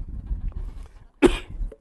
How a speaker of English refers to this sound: That is not a COVID cough.